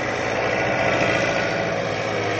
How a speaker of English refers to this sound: soon all of the latest logging equipment is in action. Giant diesel cats and wheeled log rollers maneuver around to pick up their loads or carry off what they've already loaded on.